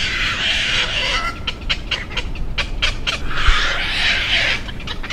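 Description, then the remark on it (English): Young night herons giving harsh, breathy snorting calls: a rough rasping stretch, then a quick run of short snorts, then another long grating burst. Loud and steady, with no talking. “No, Kevin McGowan's theory is that this snorting sound is just the babies acting competitively and vocalizing to bully other herons away from the delicious fish entrails and other tidbits.”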